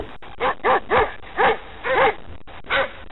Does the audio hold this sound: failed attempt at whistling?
no